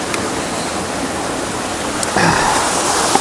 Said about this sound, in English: And to photograph a waterfall, even a teeny weeny one as this, that nobody's photographed, is is quite a prize.